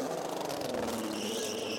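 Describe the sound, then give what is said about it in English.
Race car number 10, driven by Philippe Albuquerque after a driver change and fitted with new tyres, roars steadily and loudly, its pitch climbing slightly as it accelerates out of the pit lane, with a sustained high mechanical whine over a dense low rumble. “And away goes that number 10. Straight out off the pit lane speed limit.”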